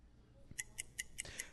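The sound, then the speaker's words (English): A ticking clock timer set for two minutes: five crisp, evenly spaced ticks in quick succession, fairly quiet, with no voices. “we're going to put 2 minutes on the clock and run through the latest on the Russia stuff, which I think pretty soon we're going to have to just rename the Mueller stuff.”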